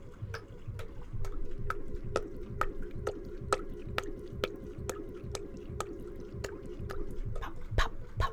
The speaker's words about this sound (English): I'm pumping out my water after my shower. Quite the event on my boat. And there's a little switch to the side of my sink, and I'm watching my sink, and it's spurting and spluttering and talking to me. It's pushing out the water into the river.